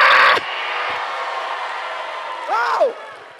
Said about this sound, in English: Stuff like that, screaming here. But I like the energy.